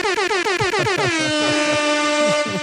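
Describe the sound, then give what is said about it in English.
A loud, blaring air horn sound effect fires in a rapid series of short stuttering blasts, then holds into one long sustained honk, piercing with no talking. “Has the air horn ever debuted?”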